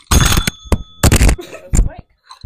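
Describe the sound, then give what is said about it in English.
A small hand bell, rung by a player during a trivia game to signal knowing the answer, sounds several times in quick, loud, clattering bursts, with bright metallic tones lingering between strikes before the ringing stops. “Ring the bell when you know the answer.”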